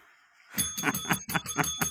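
A small bell rings rapidly and loudly, about six or seven quick strikes in a steady rhythm with a bright, sustained metallic tone, after a brief quiet start.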